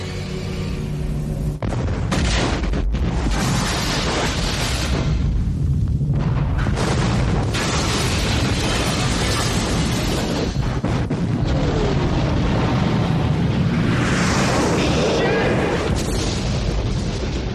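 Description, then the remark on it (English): Loud cinematic explosions from a movie scene in which C4 is set off boom and rumble over a dense, chaotic roar of blasts and crashing debris, sustained throughout, with indistinct voices buried in the din. “The explosion, the sound effects, the sound design in this movie is so awesome”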